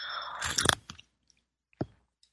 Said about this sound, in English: I'm going to have a sip of my tea here.